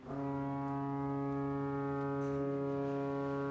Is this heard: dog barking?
no